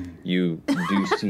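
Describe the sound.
A single short, voiced sneeze bursts out, and a person starts talking right after it.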